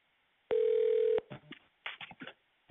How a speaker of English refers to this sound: That's literally a phone call that's coming in right now.